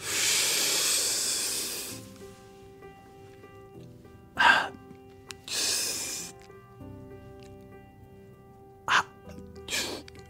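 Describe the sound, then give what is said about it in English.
Someone makes repeated sharp, breathy intakes of air: one long hissing inhale, then several shorter gasping breaths in, with no exhales and no talking between them. “I really like breathing in a lot more than I like breathing out.”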